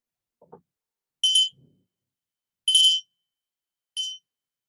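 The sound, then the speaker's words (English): A small bell rings three times, each a short, bright, high-pitched ding spaced over a second apart, with quiet gaps between and a faint soft knock near the start. “Everything that's arising in our body and our mind are just like that, similar to the sound of the bell. It has a beginning and ending.”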